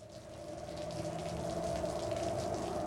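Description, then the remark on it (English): A rain sound effect: steady rain falls continuously, a dense wash of pattering drops on a surface with a faint low hum beneath, holding at an even, moderate loudness throughout with no voices. “Creaking doors, rain, a pub filled with drunks.”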